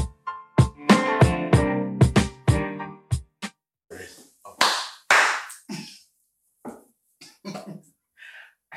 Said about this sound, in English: Just one person clap. Right. You can clap now.